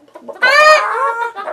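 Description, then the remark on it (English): A chicken lets out a loud, drawn-out squawking cluck lasting about a second, with a few softer clucks before and after and no talking. “Or I'll release the chickens again.”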